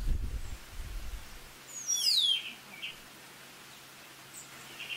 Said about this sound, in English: Now, if I move over here, away from the Zen master there, you get to hear the phenomenal bird sound that's all over this island.